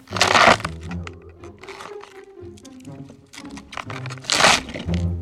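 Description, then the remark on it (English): Wet, crunchy snapping and cracking, with two loud bursts of splintering crunches at the start and near the end and smaller crackles between: a celery stalk being twisted and broken as a sound effect for the bones of a hand being crushed by a mallet. “To reveal what I'm using is just a stalk of celery.”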